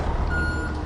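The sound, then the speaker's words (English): A UPS delivery truck's engine rumbles as it pulls up out front, while a steady, high reversing beep sounds over the low motor noise, with no talking. “We should have a drop that whenever a new episode drops, we have the sound of a UPS truck pulling up out front.”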